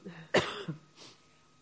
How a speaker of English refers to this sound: We'll just get the microphone to you. Sorry if I'm coughing in everybody's ear.